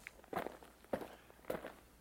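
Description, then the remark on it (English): Three distinct footsteps, someone walking into 'the big machine', fall at an even, unhurried pace, each a crisp scuffing thud separated by about half a second of quiet background hiss. “But before we do, let's take a walk into the big machine.”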